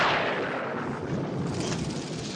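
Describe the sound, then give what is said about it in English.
A sharp, loud thunderclap from the film Flash Gordon bursts out at once, right after the line "It's an attack!", and rolls into a long, heavy rumble that stays strong for a couple of seconds, with no voices. “I love the thunder just after he says, it's an attack.”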